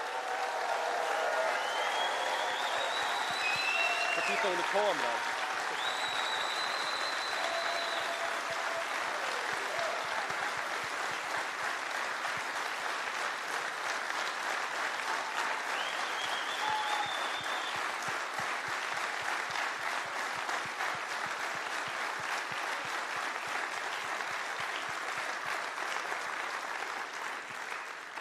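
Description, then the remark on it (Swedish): A large crowd at Europakonferensen 2023 applauds loudly and steadily for the conference staff, dense clapping with a few whistles and cheers rising above it, sustained without pause. “Men vi skulle ändå bara vilja ge dem typ jordens största applåd.”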